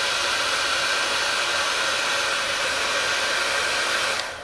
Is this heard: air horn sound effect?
no